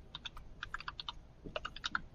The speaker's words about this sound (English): Is he having an issue with his loud-ass typewriter? Well, that too.